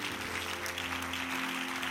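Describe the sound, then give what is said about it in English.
A church audience claps their hands in praise during worship, a dense, continuous patter, steady in loudness throughout, with a sustained low musical hum running underneath. “I wish everybody would press your way as close as you can to the front of this church while you're clapping your hands.”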